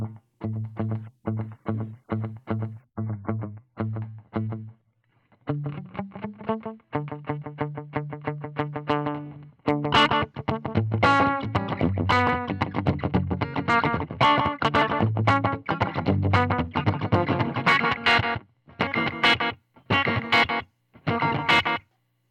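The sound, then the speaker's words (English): An electric guitar plays through a slapback delay pedal, starting with chugging repeated chords and moving into louder, driven riffs with quick doubled echoes on each note. No one speaks. “Let me go to something short like a slapback and see how that does.”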